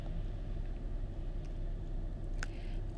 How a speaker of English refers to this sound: So yes, and I am in my mobile car, my mobile office, which is my car. So you're going to hear some cars passing by. It's pretty snowy here and slushy.